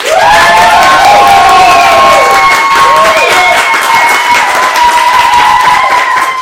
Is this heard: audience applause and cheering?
yes